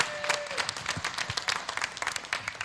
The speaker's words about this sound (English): Big hand clap. Woo! Man.